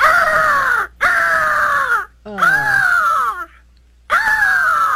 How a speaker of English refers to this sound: Now here, I can't decide if this one's angry, but here's another eagle sound.